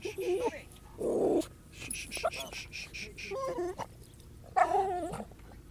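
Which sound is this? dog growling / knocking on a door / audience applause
dog growling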